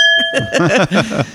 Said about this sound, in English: Clink that